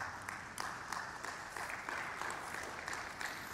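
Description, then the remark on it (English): An audience applauds in a steady, dense wash of many hands clapping at once, sustained evenly throughout without a clear peak or fade. “I'll tell him you clapped.”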